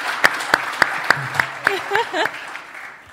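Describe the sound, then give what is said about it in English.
Steady, evenly spaced hand claps, about ten sharp claps in a row, fairly loud, with a brief murmur of voices partway through before the clapping fades out. “Yeah, I'll clap for”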